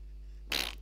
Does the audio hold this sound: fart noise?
yes